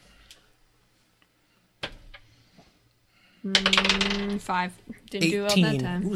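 Dice clatter across a hard table in a short burst of sharp, hollow clicks, with a few scattered taps before it. Then people start talking loudly.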